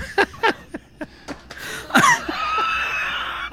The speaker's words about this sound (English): Okay. Oh. I'm getting the cough fit.